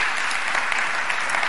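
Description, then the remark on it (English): An audience applauds in praise of the Lord, many hands clapping together in a dense, steady wash of sound that fills the space without pause, fairly loud. “Why don't we give the Lord a hand clap of praise?”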